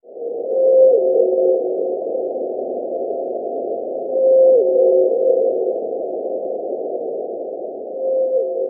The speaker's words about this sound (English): That is a blue whale. It's been a century after they were nearly wiped out. Scientists say they are starting to return to the sub-Antarctic island of South Georgia.